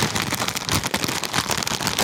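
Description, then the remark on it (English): A crisp packet being opened, with dense, continuous crinkling and crackling rustles of plastic for a couple of seconds, fairly loud with no talking. “That's the sound of the bag.”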